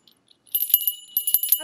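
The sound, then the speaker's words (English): A bright, high-pitched approval bell effect rings out after a moment of near silence, with shimmering metallic tones repeating in quick bursts for about a second, fairly loud. “You get the approval bell.”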